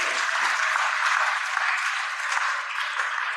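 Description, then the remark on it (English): An audience claps their hands together unto the Lord in a dense, steady burst of applause that stays loud and even throughout, with no voices standing out. “If you agree with us, give a hand clap unto the Lord.”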